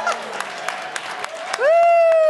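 Audience applause, a hiss of clapping with a few sharper claps standing out, then cut off after about a second and a half by a loud, steady, slightly rising pitched tone.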